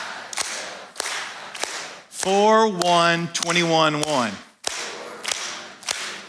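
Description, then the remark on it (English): Crisp, loud claps ring out in a patterned rhythm as an audience claps in unison; the beat pauses midway while a raised voice calls out, then the claps resume. “Give yourselves a hand. You're tired of clapping.”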